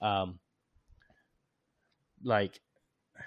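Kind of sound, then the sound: human body sound, cough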